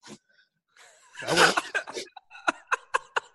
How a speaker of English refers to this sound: Hold on. I want to blow my nose.